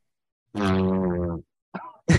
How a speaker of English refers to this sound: Like, a tuba? That's a fucking loud ass fart, man.